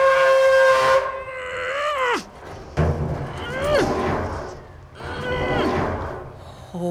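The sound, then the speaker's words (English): A loud, shrill whistle from a kettle as it boils, a steady piercing tone that drops away, then rises again in two more wavering bursts over a low background rumble. “The kettle is boiled, sure.”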